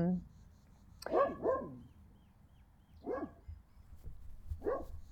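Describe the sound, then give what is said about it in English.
A dog lets out a series of short, whiny barks and yelps: a quick pair, then two more spaced a second or so apart, moderately loud over a low background hum. “Sorry, I'm getting distracted by the dog.”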